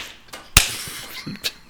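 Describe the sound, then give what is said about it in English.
A fist smacks sharply into an open palm once, loud, with a couple of fainter slaps before and after and no talking. “Oh, I'm like punching my hand with my fist.”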